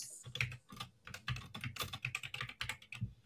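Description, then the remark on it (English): Rapid typing on a computer keyboard, a dense run of crisp clicking keystrokes with no pauses, heard alone without any talking. “Ugh, immaculate typing.”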